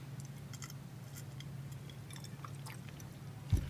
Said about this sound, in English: Let me take a sip here.